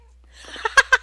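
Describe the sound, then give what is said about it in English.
A female domestic cat, asked to say hello, gives a few short, chirpy meows in quick succession, growing slightly louder, with no talking over them. “I have a talking cat.”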